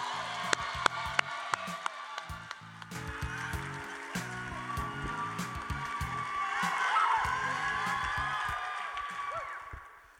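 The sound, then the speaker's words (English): An audience claps and cheers for a poet after the judges' scores are read, about ten seconds of dense applause with whoops and shouts that swells toward the end before cutting off. “Applaud the poet.”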